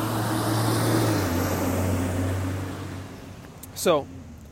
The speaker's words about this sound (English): Sorry, there's a truck going by.